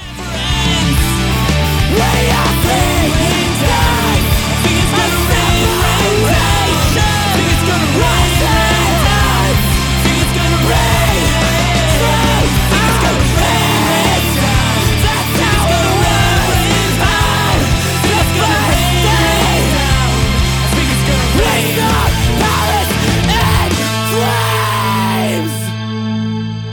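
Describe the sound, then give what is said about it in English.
A loud, distorted heavy rock song by a band from New Jersey plays continuously with harsh screamed vocals over dense guitars and drums, then cuts off abruptly near the end. “Okay, so that screaming, again, gave me vibes of another mm-hmm. band that hails from the same state, I think.”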